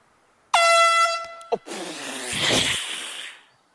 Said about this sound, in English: So they're blowing the air horn in people's backswings.